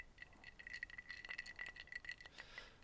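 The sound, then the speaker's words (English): A glass of scotch whisky being handled and sipped: faint, repeated clinks and light rattles of glass, with a soft ringing tone running through, and no one speaking. “Tell you what, you're going to have the whole glass.”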